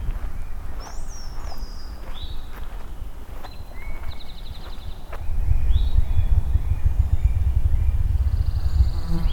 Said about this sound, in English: There's the ruffed grouse again. Really hard to locate where it is. So that drumming is very, very low pitched. Almost more of a sensation than a sound.